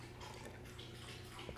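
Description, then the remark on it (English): Soft, rapid lapping of a pet, Ollie, drinking water, a steady wet rhythm heard faintly against a quiet background hiss, with no talking. “Can you hear Ollie drinking his water in the background?”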